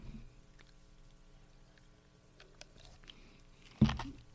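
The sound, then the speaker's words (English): Someone drinks water: faint wet mouth clicks and small swallows, then one louder, thicker gulp near the end. No one speaks. “All right, I'm just drinking water here, man.”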